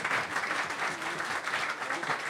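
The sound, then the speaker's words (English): Audience applause fills the whole moment, a dense, steady wash of many hands clapping at once, fairly loud and even from start to finish with no clear voices. “Give a big round of applause to our good friend”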